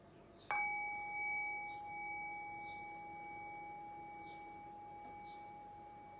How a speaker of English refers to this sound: Now ring the sound of the bell again. Rest your awareness on the decay of the bell. Allow the decay of the bell to guide your awareness into silence.